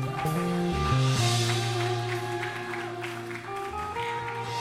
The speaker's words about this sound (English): Can we just clap for Jesus real quick?